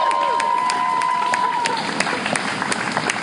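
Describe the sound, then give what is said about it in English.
A crowd claps and cheers, steady applause with scattered whoops rising over it, lively throughout. “Can we get that clapped up? Woo!”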